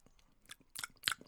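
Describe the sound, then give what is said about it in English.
Chewing of a sticky, milky chocolate orange fudge, with a few wet, clacky mouth sounds building to a sharper crunchy burst near the end. No one speaks. “It's some fudge. When you talk about clacky noises, listener.”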